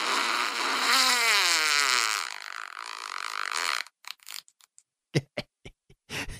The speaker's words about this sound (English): The thing about all these fart sound effects no. is that I don't realize they're going to go on for as long as they do.